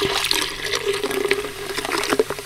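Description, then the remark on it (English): Tonic water pours steadily and splashes into gin to make a gin and tonic jelly, a continuous bubbly gush with fizzing texture, lasting a couple of seconds with no one speaking. “So we've got a little gin here. I'm going to slot that in. Because it was 10 in the morning, I thought, why not make a gin and tonic jelly? Some tonic water.”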